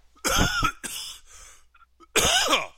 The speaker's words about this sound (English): I'm sorry. I got my COVID cough going.